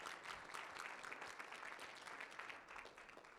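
An audience at Kingsgate Church claps steadily as a clap offering to the Lord, a dense, continuous wash of many hands applauding at once, sustained throughout without any speech.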